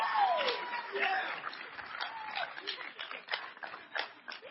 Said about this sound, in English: Now, you can give a round of applause for that. Yeah. Louder! Yeah.